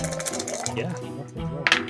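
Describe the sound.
Three six-sided dice (3d6) clatter and rattle briefly across a surface in a tabletop game roll, coming up 6, 4 and 1, a cluster of sharp, bright clicks near the end, heard beneath people talking.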